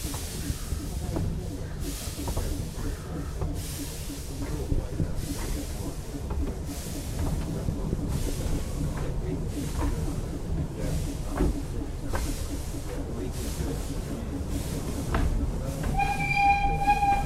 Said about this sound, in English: Again, the hiss of steam. The rattle of coaches.